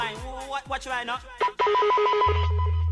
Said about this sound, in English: Yeah, is it like a ringtone or like a text alert tone? Or it's something from like old phone technology. Well, that's the vibe it gives off.